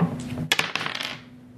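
Dice clatter across a hard tabletop in a quick burst of sharp clicks, bouncing several times before settling, over a faint low hum.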